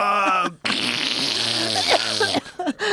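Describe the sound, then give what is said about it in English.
A voice blows a long, loud, buzzy raspberry imitating Harvey farting, sputtering for about two seconds after a brief voiced sound and ending in a few short bursts. “Yeah, of course he farts when he comes.”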